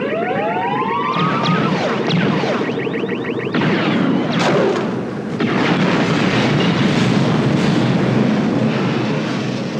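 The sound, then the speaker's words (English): A probe droid's electronic alarm of rising, warbling tonal sweeps, cut off by a loud, sustained explosion that rumbles and crackles for several seconds, dense, with no voices; a big element of the explosion is a large sheet of plywood being snapped behind a building. “So next is the Probot alarm and explosion.”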